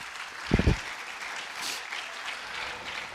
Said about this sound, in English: Come on, somebody clap your hands unto the Lord right now. Come on.